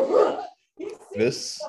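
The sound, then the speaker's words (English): A dog barks in two quick bursts separated by a short pause, fairly loud, with a bright, yappy edge to the second bark. “hates that dog so much.”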